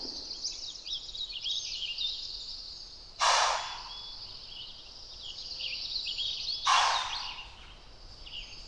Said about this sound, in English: That loud blowing noise, it's their warning sound to other deer. Something must have chased it towards us.